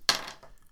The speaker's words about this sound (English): So that's the two damage then, and then a double crit roll. So we'll go black dice first.